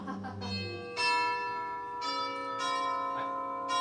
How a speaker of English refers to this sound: Stop pushing it! Stop! Stop pushing it! I did. I only pushed it the one time. Is that why your finger just kept going in and out of that little... It's a deep bell. All right. It's a bit of a deep bell.